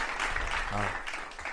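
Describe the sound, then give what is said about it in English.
A short burst of dense, steady crowd applause, inserted as a sound effect, with a brief voiced cheer rising out of the clapping partway through. “Yeah, we're going to put a little applause right here.”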